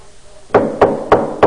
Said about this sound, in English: He knocks on the door again. Friend, get up. I've got to have three loaves of bread.